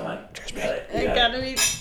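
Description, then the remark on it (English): Wine glasses clink together several times in a quick toast after a bottle of wine is finished, bright ringing tones overlapping, with people chattering underneath. “So let's do a cheers with all of us right here.”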